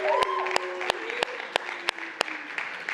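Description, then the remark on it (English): An audience breaks into a round of applause for Colleen, who is in the booth, a steady wash of clapping with a few sharp, louder claps punching through at regular intervals, plus a faint tonal whistle early on. “Would everyone give her a round of applause to Colleen?”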